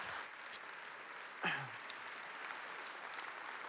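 An audience applauds with dense, steady clapping that holds at an even, fairly soft level throughout, broken by a brief sharp burst and a short falling whoop early on.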